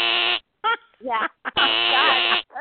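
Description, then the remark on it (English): A harsh, nasal game show wrong-answer buzzer blares in two loud bursts during a fact-or-fiction quiz: a short one, then a longer sustained drone. Brief bits of voice come in between and after. “That actually spiked my blood sugar, that buzz.”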